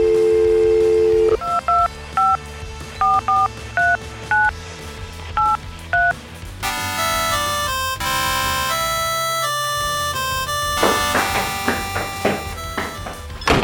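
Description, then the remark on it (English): A brief steady dial tone gives way to a quick run of about ten crisp phone keypad beeps in an uneven rhythm as someone calls a cell phone, then a bright, busy melody takes over. “I'm just gonna give you a call on your cell phone here.”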